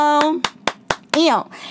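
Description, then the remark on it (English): A small round of applause: about five sharp, evenly spaced hand claps, with a voice whooping along at the start and again with a rising-falling cheer near the end. “I don't even think we did a round of applause.”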